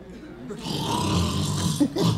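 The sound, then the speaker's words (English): A voice imitates Peter's loud snoring, a sustained rough, rasping inhale lasting a couple of seconds, heard on its own. “You can't pray effectively in the same room where Peter's snoring.”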